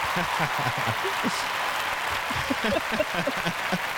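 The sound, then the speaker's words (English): An audience claps steadily to welcome a guest, about four seconds of a dense, even wash of hand claps at a fairly loud level, with faint voices murmuring underneath. “Hey, got those claps.”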